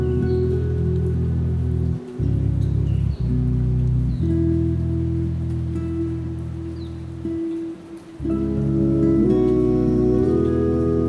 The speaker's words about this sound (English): Be here in the rain and invite yourself to recognize each of the blessings.